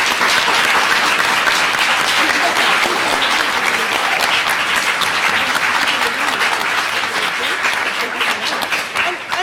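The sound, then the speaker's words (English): A loud, sustained round of applause from a crowd for the authors and panelists, dense rapid clapping holding steady for several seconds before tapering slightly at the end. “Well, so can we just give a huge round of applause to clearly our authors, our panelists.”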